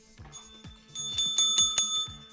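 A hand bell rings repeatedly in quick succession, each stroke bright and metallic with lingering high overtones, growing louder over a couple of seconds. No voices.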